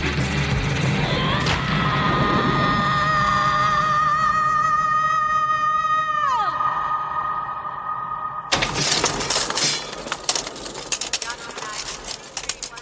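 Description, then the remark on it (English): A woman's long, drawn-out primal scream of rage in a film scene shot and edited in slow motion, slowed and sustained for several seconds before sliding downward in pitch, then cut off by a loud, crashing shatter and clatter. “And they do a really nice job here shooting this in slow motion, the edit in slow motion, where you have this primal scream of rage.”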